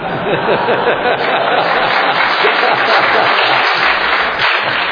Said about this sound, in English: What's amazing is that that's an applause line.